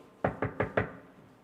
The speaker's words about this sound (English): And one day, Aisha radiallahu anha, the Prophet sallallahu alayhi wasallam, he's at home and he hears a knock on the door.